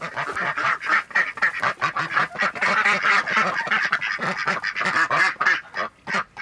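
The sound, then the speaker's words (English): Ducks quack loudly and continuously in a crowded chorus in a pen on a farm of about 16 acres, their nasal calls overlapping in rapid bursts with hardly a pause. “They've got guineas, quail, chickens, and ducks.”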